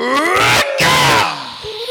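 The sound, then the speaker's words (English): Leto, holding his sword up high amid a battle, lets out a mighty roar: a loud, strained vocal roar bursts out twice in quick succession, harsh and rising, then trails off into a quieter, lower fading tone. “In the midst of the melee, Leto holds his sword up high, lets out a mighty roar.”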